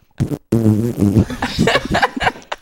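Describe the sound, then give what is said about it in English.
A voice makes a buzzing, drawn-out fart imitation with the lips, loud, followed by a few seconds of garbled vocal noises and what sounds like snickering. “It is a smelly fart.”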